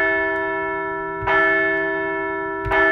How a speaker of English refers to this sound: Let's ring the bell for a couple of home wins to open up the National League Championship Series.